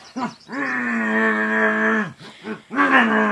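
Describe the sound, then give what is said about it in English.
A hippo roars loudly: a short grunt, then a long, sustained bellow of about a second and a half, followed by a few rough huffs and another roaring burst. “Hippo opened his mouth and roared.”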